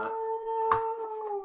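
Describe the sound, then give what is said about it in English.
A voice imitating whale song with a long, steady, hollow moaning tone held for over a second. A brief sharp tap sounds partway through, and nobody talks. “That's my whale song.”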